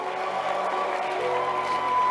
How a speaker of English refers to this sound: Clap your hands and give the Lord a shout of praise.